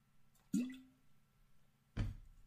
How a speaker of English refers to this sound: This thing is making way too much noise, and the water tastes way too metallic for my liking. This is going to be the first and the last time that I drink out of that thing.